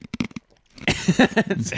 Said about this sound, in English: crunching away on some crust over there. Yeah, that's not ice. That's some crust from the inside of the cup. That's leftover smoothie from last Tuesday. Yeah, you got to crunch that stuff up.